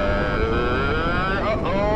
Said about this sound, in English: Main engine ignition. 3, 2, 1. SRB's ignited, and we are...